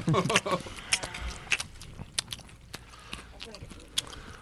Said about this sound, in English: The people that listen to the show, there's one thing they hate is eating. Right. There's nothing worse. Everyone just chewing in the mics. Then listening to everybody chewing in the mics. Go back and chew in the mics.